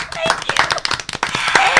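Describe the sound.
Audience applause: a steady burst of quick, irregular hand claps, fairly loud and continuous for under two seconds, with a few voices audible underneath.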